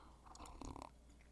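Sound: sipping coffee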